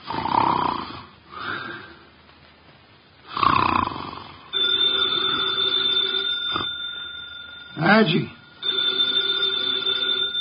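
A 300-pound man sitting with his eyes closed in a specially built chair in an office snores through his nose in several loud, rasping breaths spaced a few seconds apart, while a steady electronic telephone ring starts partway through and continues beneath the snores.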